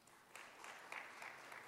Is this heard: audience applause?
yes